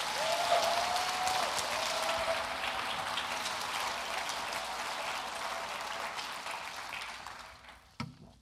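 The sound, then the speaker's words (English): A large audience claps steadily for about seven seconds to thank the staff, a dense, even wash of applause that holds strong before tapering off, with a brief clatter just before it ends. “But would you give them a round of applause for all that they do?”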